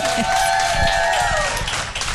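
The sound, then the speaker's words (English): An audience claps steadily for about two seconds, a dense wash of overlapping claps with a few high, sustained cheering voices riding on top. “Can I have some claps if you agree with me?”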